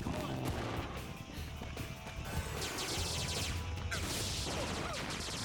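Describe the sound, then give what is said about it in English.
Rapid laser blaster shots fire in quick bursts, loud, some blasts hitting the ground without causing explosions, layered over a dense, busy background of crackling action sounds that never lets up. “Some of those blasts are hitting the ground but aren't causing explosions.”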